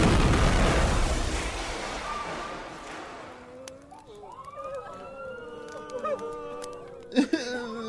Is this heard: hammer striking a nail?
no